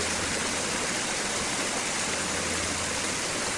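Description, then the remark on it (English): Steady rushing water pours continuously over a memorial wall bearing quotes from Harry T. Moore and Martin Luther King Jr. in the Moore Center's meditation garden, a dense, even hiss filling the whole clip with no voices or breaks. “Water flows over quotes from Harry T. Moore and Martin Luther King Jr.”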